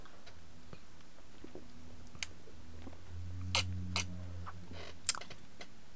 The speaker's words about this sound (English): Let me sip my beer.